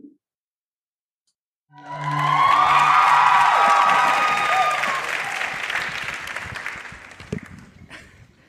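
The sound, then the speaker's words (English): A crowd bursts into loud applause with cheering and whoops after a moment of silence, the clapping dense and sustained before gradually thinning out toward the end. “And you got applause.”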